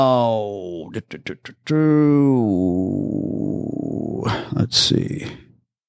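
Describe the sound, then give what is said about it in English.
A dog, given the command to speak, gives a few short, sharp barks, then a long, loud, drawn-out yowling bark that wavers and trails off, with no talking. “I go, speak. The dog should bark.”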